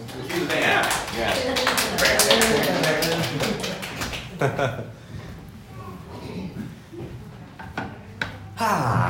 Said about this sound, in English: So give him a round of applause.